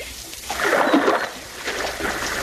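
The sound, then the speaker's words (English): Water splashes and sloshes in irregular surges as Sergeant Preston, King and a constable swim hard out into a river to reach the side of a passing barge, with a steady, moderately loud churning and no voices. “Sergeant Preston, King, and the constable swam out into the river just in time to reach the side of the barge as it was passing.”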